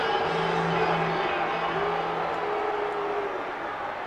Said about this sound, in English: Crowd boos.